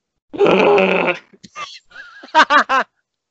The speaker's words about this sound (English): And make a noise while you yawn. Just be that guy. Make that noise that my sister makes.